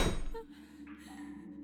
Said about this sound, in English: A moment later, the door closed with a loud thud, and all light vanished.